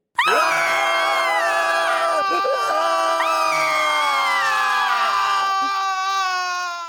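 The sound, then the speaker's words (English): A whole company of people scream together in sudden, sustained, piercing terror, a loud, dense wall of shrieks and wails that holds steady for several seconds before tapering slightly at the end. “Scarcely had I crossed the sill when there descended upon the whole company a sudden and unheralded fear of hideous intensity, distorting every face and evoking the most horrible screams from nearly every throat.”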